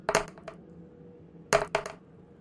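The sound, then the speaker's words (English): Dice clatter across a hard table in two quick bursts about a second and a half apart, each a short flurry of sharp clicks, fairly clear, the rolls coming up 8 and 7. “Yeah, neither of those rolls will make him budge.”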